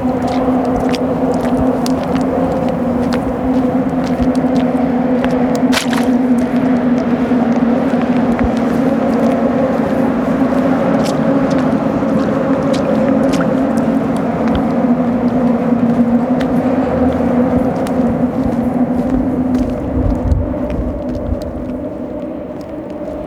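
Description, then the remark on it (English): Steady wind buffets an open pier in Gatineau, surrounded by water and overlooking the Alexander Bridge, on a windy, wet day after overnight rain, layered over a constant low droning hum of passing traffic, with occasional faint clicks and thumps; no one speaks throughout. “I've been coming to the pier in Gatineau for over a year now. It's my safe place. It's surrounded with water and it overlooks the Alexander Bridge.”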